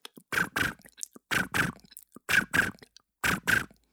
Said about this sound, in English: What is that the sound of? Oh, that'd be crickets.